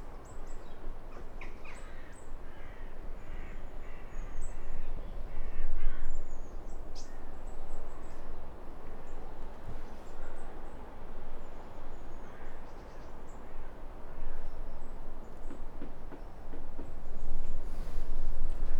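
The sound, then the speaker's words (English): Outdoor woodland ambience with repeated crow caws and scattered bird calls, some nearby and some farther off, over a steady bed of wind and rustling noise. No one speaks. “As I said, the forest is quite thick, but we can hear some crows and maybe a robin somewhere in the yew next to us.”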